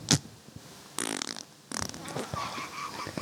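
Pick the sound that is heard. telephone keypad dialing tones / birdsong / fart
fart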